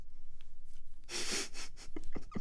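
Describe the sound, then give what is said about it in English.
A single long, airy yawn, fairly loud, rising in a breathy rush before trailing off into a few soft mouth and breath sounds. No one speaks. “Big ol' yawn.”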